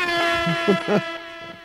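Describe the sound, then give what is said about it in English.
A loud air horn blares in one sustained, brassy blast lasting the whole moment, with muffled voices briefly audible underneath. “Give me a bombs and an air horn.”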